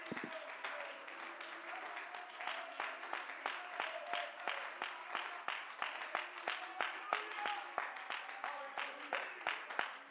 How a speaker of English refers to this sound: Would you clap your hands unto the Lord tonight?